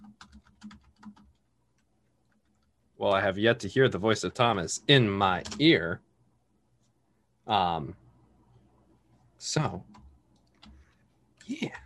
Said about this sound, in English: Sorry, just typing some message really quick.